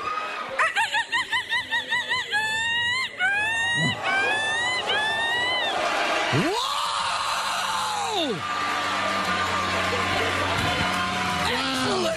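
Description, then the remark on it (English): A girl imitates a seagull call into a microphone for a crowd: a quick string of sharp, yelping cries, then several longer rising-and-falling shrieks that ring out loudly over a faint murmur. “All right, how long have you been doing the seagull?”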